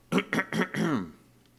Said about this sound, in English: Let me clear my throat, y'all.